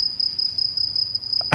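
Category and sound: insect, crickets chirping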